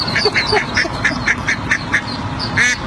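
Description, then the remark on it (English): A mother duck calling to her ducklings gives a steady run of short, evenly spaced quacks, about ten in quick succession, clear over a low background rumble. “They downloaded the sound of a mother duck calling to her ducklings.”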